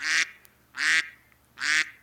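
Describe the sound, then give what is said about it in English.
Three loud, nasal quacks from a duck call, evenly spaced about a second apart, each a short buzzy burst with brief silence between them. “That's a duck call.”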